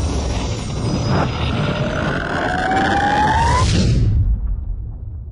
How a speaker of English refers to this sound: Side note, that's a nice little sound effect there for the time whoosh. I've never quite listened to it before with headphones on and with no other distraction, with no visuals or acting and whatnot, but it's quite nice.